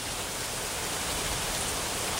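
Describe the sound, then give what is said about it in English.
Steady rain falls without a break, a dense, even hiss with a soft patter underneath. No voices, just the constant wash of rainfall at moderate volume. “No ego is necessary in this earth, in this rain, in this masterpiece of life.”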